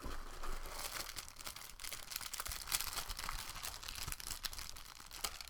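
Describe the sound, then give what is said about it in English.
Steady crinkling of a plastic bag holding a bracelet or necklace being handled, with dense crisp rustles and small sharp crackles running continuously throughout, no voices present. “This is a bracelet or necklace? Inside another plastic bag.”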